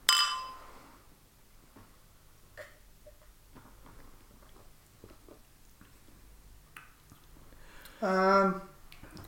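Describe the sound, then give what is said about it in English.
Glasses of beer clink together once in a toast, a bright ringing chime at the start, followed by quiet scattered clicks and handling sounds and a short tonal ring near the end. “Well, cheers. Cheers.”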